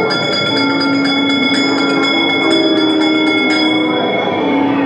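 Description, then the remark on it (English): A bell rings repeatedly with bright, shimmering overtones that hang in the air, struck again and again over a dense, continuous background hum for several seconds. “Wherever you dwell, give us a hint by ringing the bell.”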